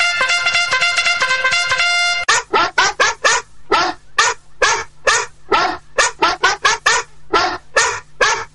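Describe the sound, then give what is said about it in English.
Gabby, a postal pit bull, lets out a long, high, wavering whine, then breaks into a fast, steady run of about twenty loud, sharp barks with no talking. “Gabby the postal pit bull just flew in with her little angel wings and dropped off a load of mail.”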